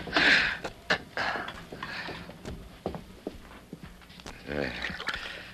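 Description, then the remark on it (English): Coffee is poured into a cup at breakfast as a soft liquid stream, with a rising, filling tone near the end. Light clinks and the clatter of dishes accompany it. “Boy, that coffee smells kind of good. I'll pour you a cup right away.”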